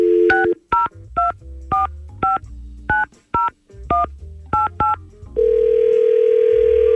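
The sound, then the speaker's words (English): About ten quick touch-tone beeps from a phone keypad being dialed in an irregular rhythm to call a woman, then a steady, unbroken telephone tone holds to the end. Clear, with no talking. “Oh, we got to try to call Shelly. Let's see if we can get her on the phone”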